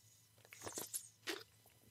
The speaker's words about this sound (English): So give me one sec. I'm going to take a swig of water right in your ear.